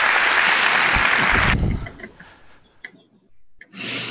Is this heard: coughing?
no